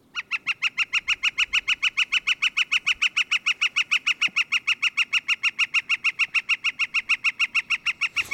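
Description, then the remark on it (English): A northern flicker calls in a long, rapid series of loud, nasal notes, steady and unbroken for several seconds, with no voices over it. “That's the northern flicker.”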